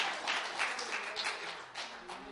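A crowd claps together in a steady, dense patter of hands, moderately loud, for a couple of seconds with no voices on top.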